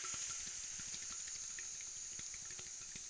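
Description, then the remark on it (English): A voice imitates falling rain with a steady, airy hiss held for about three seconds at an even, moderate level, with faint clicks and crackles underneath. “That's the traditional Native American rain song for when they want the rain to come.”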